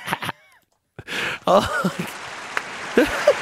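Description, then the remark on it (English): A short applause sound effect kicks in after a brief pause: dense crowd clapping mixed with scattered whoops and cheers, fairly loud and steady for a couple of seconds. “That had to get a clapping sound effect.”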